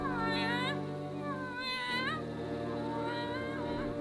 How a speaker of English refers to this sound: Yes, it's a cat. We called him Jerry. Just a tomcat, color black, disposition friendly, usually.